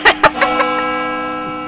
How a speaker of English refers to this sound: Holy shit, do you hear that bell? It's the bell that closes Shape News.